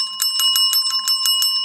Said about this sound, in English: Oh, we got our bell. Mm-hmm. Okay. We cannot do this without this.